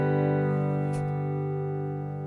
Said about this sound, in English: And no, you weren't hearing things. And yes, that is intro theme music.